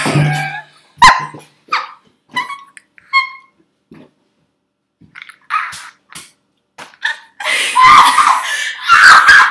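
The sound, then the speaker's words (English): Short yelps and bursts of excited vocalizing give way to a loud, sustained screaming outburst near the end, raw, mixed with laughter-like cries. “Stop screaming.”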